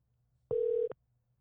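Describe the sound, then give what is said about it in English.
A single steady electronic ringback tone on an outgoing phone call sounds once, a short mid-pitched beep with a click at each end, clear and alone against near silence. “Answer your phone. Pick up the phone, baby. I know you're home, baby.”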